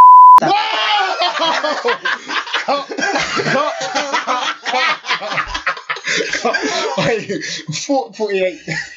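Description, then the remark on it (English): A single short, loud electronic beep tone sounds right at the start, then gives way to continuous fast-paced talking from several voices, with occasional chuckles. “So now you want to beep.”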